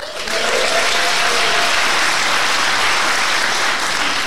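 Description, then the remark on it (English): A crowd at a barbershop singing evening claps steadily to welcome the VIPs, starting with the Deputy Lord Mayor, a dense wash of many hands at a loud, even level that holds for the whole four seconds without fading, with no voices standing out above it. “And would you join me, please, in welcoming our VIPs for the evening, starting with Deputy Lord Mayor, Councillor Steve Smith.”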